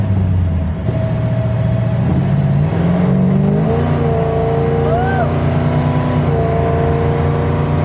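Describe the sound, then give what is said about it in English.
A four-speed car engine accelerates hard, its droning pitch climbing steadily, then dipping briefly at each gear shift before rising again. The engine is loud and continuous. “You were shifting, too, so that made a difference, too.”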